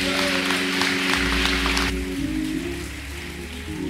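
An audience claps in a dense, steady wash of applause that fades out about halfway through, leaving sustained low musical tones humming underneath.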